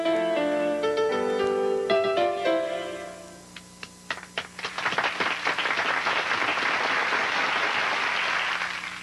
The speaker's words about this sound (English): Got some nice little applause there at the end.